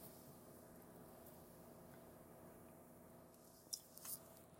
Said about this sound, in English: I'm drinking water. Just to let you know, if you hear slurping, I had to give up soda, so I just drink coffee, tea, and water.